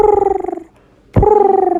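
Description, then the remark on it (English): A person imitates a pigeon's coo: two throaty, warbling bursts of low, fluttering voice separated by a short pause, both loud and with no talking. “I don't know why I did my pigeon impression.”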